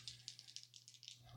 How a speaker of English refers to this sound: Gonna use different dice because the last ones I used didn't roll well.